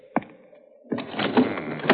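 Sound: window being closed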